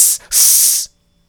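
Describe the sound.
A voice imitates the hiss of a big goose: two loud, breathy bursts of high-pitched hissing, a short one and then a longer sustained one after a brief gap, with no talking.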